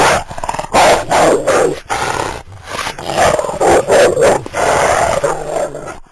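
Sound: wolf growling and snarling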